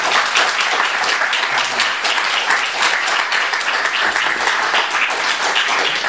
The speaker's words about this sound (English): So without further ado, please give a warm round of applause for Charles Baxter.